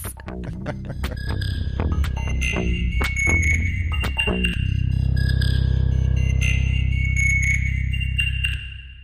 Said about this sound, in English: Got a very loud helicopter coming over at the moment.